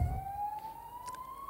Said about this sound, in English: How ironic. We'll just pause as a police siren goes past.